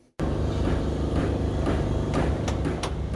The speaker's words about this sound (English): The people of Senje, Liberia welcome the sounds of hammers and generators as the armed forces of Liberia received a helping hand from half a world away.